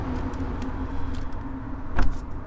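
Someone outside a church tries its locked door: a door handle is tried with a few faint rattles, then one sharp metallic clunk near the end, all over a steady low rumble of passing traffic. No one speaks.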